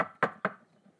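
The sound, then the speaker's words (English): Three sharp knocks on a wooden door in an even, quick rhythm, fairly loud, each with a short hollow ring before fading to quiet. “And as she sat there, she heard a knock at the door.”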